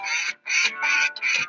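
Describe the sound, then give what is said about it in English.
A rapid series of about four loud, raspy duck quacks in quick succession, with brief gaps between each call and no talking. “Here come the ducks, get the high ball”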